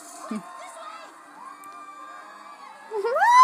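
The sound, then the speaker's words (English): A crowd screams and cheers, a steady wash of high-pitched voices that swells into louder, rising shrieks toward the end. “The screaming, I can't.”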